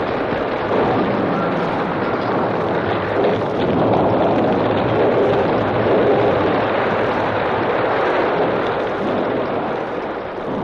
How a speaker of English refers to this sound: That's not thunder. It's a blast. Get back. Hug the wall. Look out for those rocks.